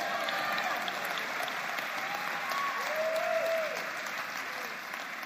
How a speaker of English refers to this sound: Good Jesus, a hand clap.